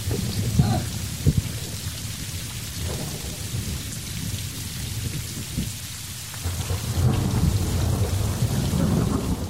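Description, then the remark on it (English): Steady rain pours down throughout, with deep rumbles of thunder rolling in the background and a couple of sharper cracks early on; no voices, just the storm filling the space. “Oh, and the storm's passed.”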